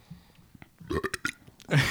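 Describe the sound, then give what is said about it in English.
A quick run of throaty belches, several short gurgling bursts in a row, followed by a louder, longer burp at the end, with no talking. “It was a classy belch. There were several in a row.”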